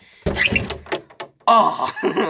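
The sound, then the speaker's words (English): A closet door is kicked open with a loud thump and clatter, followed a moment later by a second burst of rattling noise as it swings. The closet is used as a recording space and is lined with foam and blankets. “Crack open the door. That hurt my foot.”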